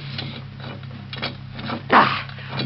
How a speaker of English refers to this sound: What a shame, Mario, that you can't help me lift this door. Even with an iron lever, it's Too much for one man to open